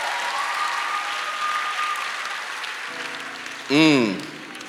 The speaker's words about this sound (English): Give them a hand clap. Please clap for the champions.